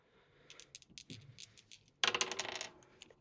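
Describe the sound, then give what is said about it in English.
A quick series of light clicks, then a louder burst of hard clattering as two dice tumble and rattle across a table before settling, with no voices, rolled during a tabletop game. “So roll two dice.”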